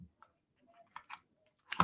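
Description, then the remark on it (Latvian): Several small, quiet plastic clicks of a vape device's buttons being pressed while testing charging and vaping at the same time, spaced irregularly with a slightly louder click at the end; no talking. “Piespiežam.”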